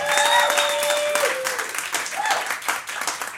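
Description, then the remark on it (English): A live audience of Star Trek fans at a Star Trek special show claps in a dense, steady burst of applause lasting a few seconds, with some high whoops or whistles rising over it early on before the clapping thins slightly. “By applause, how many people here are fans of Star Trek?”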